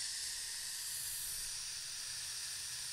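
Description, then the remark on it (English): A steady, airy hiss of a vape with a dead battery being puffed, continuous for about three seconds with a bright, breathy texture and no talking over it. “I'm surprised that even vaped.”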